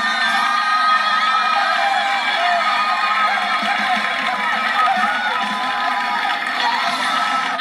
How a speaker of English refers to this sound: Well, there's a standing ovation. Yeah. Like, the song ends, everyone stands up and is clapping like, woo!